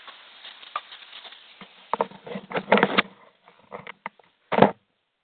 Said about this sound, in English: Because I have to stand out here in the rain a little bit.